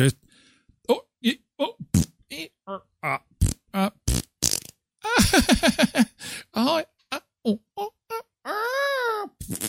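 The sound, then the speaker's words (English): A voice makes a rapid string of short grunts, snorts and blown raspberry fart noises, some buzzy and sputtering, others breathy, ending in a longer squealing whine, all fairly loud. “We're just going to grunt, snort, and fart.”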